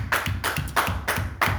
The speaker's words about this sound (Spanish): Vamos a aplaudir, Señor.